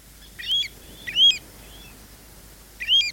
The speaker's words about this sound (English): Birds played a vital role. Birds like the Pacific golden plover we're hearing now.